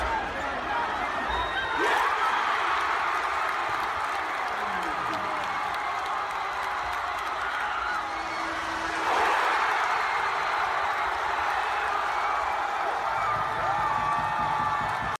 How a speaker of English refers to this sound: And the roar of the crowd is just unbelievable at the end there.